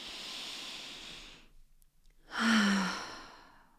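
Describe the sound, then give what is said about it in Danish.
A deep breath drawn slowly down into the belly, a short pause of silence, then a louder, longer exhale like a sigh, with no talking. “Bare ved at optage den her podcast og lige tage det åndedrag.”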